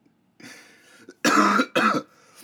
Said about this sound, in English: That's what just made me cough, because I just said that foul ass shit for no reason.